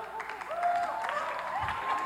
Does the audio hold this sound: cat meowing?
no